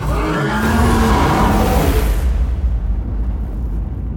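A loud, harsh monster roar with a grinding, growling texture sweeps downward in pitch for about two seconds, then trails off into a sustained low rumble. No one speaks.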